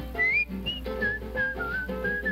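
A bright, clear whistle carries a bouncy melody, hopping between short sustained notes in a steady rhythm over a soft instrumental backing, close and moderately loud.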